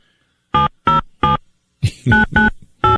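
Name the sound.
telephone call dialing tones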